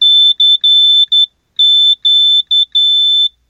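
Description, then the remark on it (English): A loud, shrill electronic piezo beep from a small electronics kit in an Altoids tin, powered by two coin cell batteries, sounds in two bursts of short pulses, each group of beeps separated by a brief pause, with no voices. “And we'll see if we can make it beep.”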